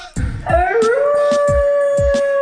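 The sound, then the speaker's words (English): A radio show producer lets out a long wolf-like howl that rises and then holds a steady pitch, loud, over a rhythmic low thumping beat. “That's the Big Bad Wolf, our producer”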